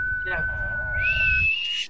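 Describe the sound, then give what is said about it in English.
Steady, high whistled tones from a couple of people overlapping, one holding a level note while another slides higher, with murmured voices and laughter underneath, fairly loud. “Can we all whistle?”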